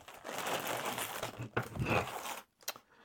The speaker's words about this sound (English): Which, how the fuck did he even bag this? Really? I'm afraid to unbag it now. It's like it's sealed.